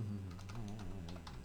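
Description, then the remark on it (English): Quick, irregular keystrokes clatter on a computer keyboard, moderately loud, several taps in a loose rhythm over a low steady hum, with no voices. “I have to type to get it, you know.”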